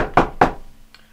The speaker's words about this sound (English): Then you guys all are awoken by a knock on Saros and Thea's door. Like, you guys in the other rooms hear this knocking. It's belligerent.